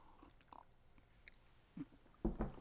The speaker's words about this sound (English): Real quick, another sip of coffee.